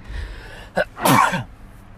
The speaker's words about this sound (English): I'm just going to leave that sneeze on the podcast. Some people edit that stuff out.